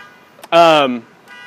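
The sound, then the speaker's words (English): A car alarm outside blares once in a short, loud, steady electronic tone lasting about half a second, then cuts off, leaving a faint background hum. “We could all go over there and tip it over.”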